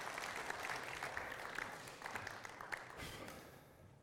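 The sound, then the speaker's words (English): An audience claps steadily for about four seconds, a dense wash of many hands with a few sharper individual claps, holding an even level before thinning slightly at the end. “Give them a round of applause just because they didn't know that was happening.”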